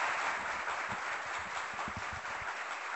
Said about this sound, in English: ladies and gentlemen, let's give him a roaring round of applause.